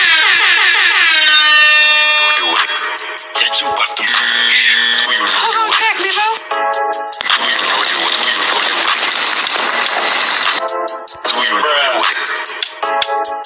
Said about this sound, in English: but first, let me sound this alarm.